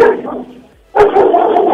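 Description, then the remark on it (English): A caller's dogs bark in a noisy burst, a first flurry of yelps fading into a brief pause before another loud, dense stretch of barking resumes. “Are we talking to you or to your dogs?”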